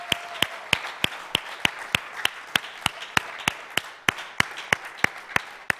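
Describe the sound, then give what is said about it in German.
Congregation applause at the pastor's call for everyone to applaud one another, with steady, evenly spaced clapping, about three claps per second in unison over a fainter wash of scattered clapping. Moderately loud throughout, with no voices. “Komm, lasst uns einen Applaus geben gegenseitig.”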